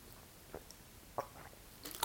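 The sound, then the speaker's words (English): Someone takes a quiet sip of water, with a few soft, wet mouth clicks and swallowing sounds spread over a couple of seconds; no one speaks. “Had to get a little drink of water.”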